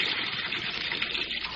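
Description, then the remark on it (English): Steady rushing water pours continuously as a bathtub is filled half full from a running tap, a dense hiss with no pauses and no voices. “I think that's the about amount of water Hart drowned in.”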